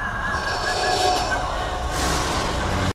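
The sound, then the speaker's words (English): A steady, ringing, whistling Star Wars sci-fi vision ambience, much like the Force Vision ambient sound from The Force Awakens: several high sustained tones hover over a dense rushing, rumbling wash for about three seconds, then cut off abruptly. “It just sounds very similar to that ringing, whistling kind of noise.”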